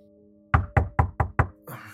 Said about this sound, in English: Mr. Fraser, you wake to a knock at your door.